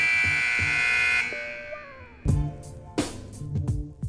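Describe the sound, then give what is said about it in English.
A harsh, steady two-minute warning buzzer blares for just over a second and cuts off, leaving a fading tone followed by a few sharp, noisy bursts and thumps. “The 2-minute warning.”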